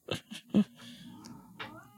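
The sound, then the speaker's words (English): A cat meows softly a couple of times, with a few short scuffing or clicking sounds just before; no one is talking. “I don't know if the cat gets picked up on your recording. But I think the cat likes ….”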